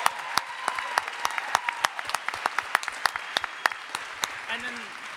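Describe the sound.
An audience applauds a woman standing up in the crowd, many hands clapping in a dense, irregular patter of sharp claps that holds steady for several seconds, with a few brief cheers or voices rising faintly near the end.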